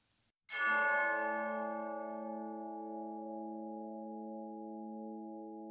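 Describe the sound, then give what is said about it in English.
A single bright chime from a wristwatch strikes after a brief quiet moment and rings on with a steady, sustained tone that fades only slightly, heard clearly and alone with no talking. “That chime. That's from Mike's watch.”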